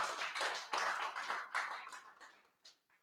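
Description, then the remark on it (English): An audience breaks into dense, overlapping applause, many hands clapping at once in a broad crackling wash that thins out after about two seconds into a few scattered final claps. “Did you get something out of this? Go ahead and clap then.”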